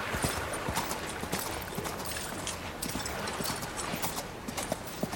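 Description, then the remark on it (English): Rapid, rhythmic hoofbeats of a lone rider's horse galloping along a beach on the coast of the Shadow Sea, a steady stream of sharp clip-clop strikes over a constant rushing, watery background. No one speaks. “Along this beach on the coast of the Shadow Sea, a lone rider gallops south from Windstrafe Keep to a small waterfront town called Shipwall.”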